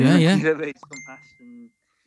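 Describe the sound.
A person talks briefly, then a single bright phone notification ding rings out as a message with videos arrives, its clear high tone lingering and slowly fading under a few quieter murmurs.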